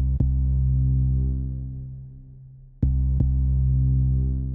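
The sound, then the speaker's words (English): In a TV series theme song, a low, sustained droning hum fills the background while a heavy, thumping heartbeat pulse strikes through it, a single beat early on and then a quick double beat later. “What's most noticeable about the theme song is that heartbeat that's throughout the whole piece.”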